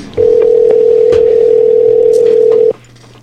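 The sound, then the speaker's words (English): A steady, loud telephone dial tone of an outgoing call hums continuously for about two and a half seconds, then cuts off abruptly, leaving a faint low background hum. “Okay, first official recorded phone call. Here we go.”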